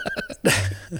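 A horse whinnies in a quick series of quavering, pitched calls, then lets out a loud, breathy snort. The sound is close and clear, with no one talking.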